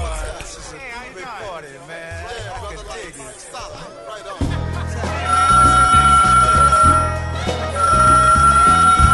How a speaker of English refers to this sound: It's a Love Ultra, y'all. So when the Love Ultra phone starts to ring, that means we got to start reaching out to some of our brothers, some of our sisters around the world.